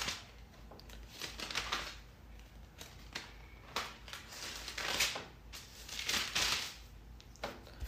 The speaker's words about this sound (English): I'm turning the page with that, my finger was problematic.